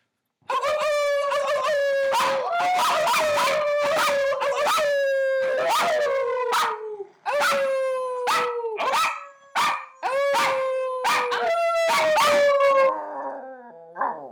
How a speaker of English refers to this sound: If you don't want to hear a dog bark a bunch, see you next week.